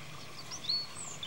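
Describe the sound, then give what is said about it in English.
A small bird chirps a few times in a quiet, peaceful natural setting, brief, high thin notes coming in quick, irregular bursts over a soft, steady background hush, with no one speaking. “What a cute little bird.”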